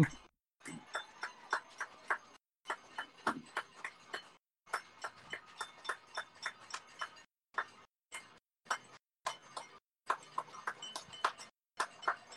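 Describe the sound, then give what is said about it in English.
Neighbours applauding outside, with a rattle shaken and drums played down by the water: bursts of sharp, rhythmic claps and knocks, fairly loud, repeating steadily and broken by sudden brief silences, with no clear cheering voices standing out. “Yeah, it's definitely trying to cut out the background noise, but because of the applauding nearby, it's giving it to us, so it's coming through.”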